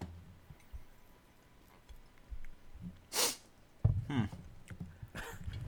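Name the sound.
sneeze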